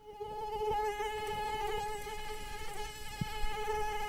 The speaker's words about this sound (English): One of them is a microscopic parasite, and the other is the Anopheles mosquito.